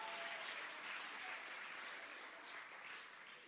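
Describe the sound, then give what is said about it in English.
A church audience claps their hands in praise of the Lord, a dense, sustained wash of many hands applauding together at steady volume, easing slightly toward the end. “Oh, come on, give the Lord a mighty hand clap of praise.”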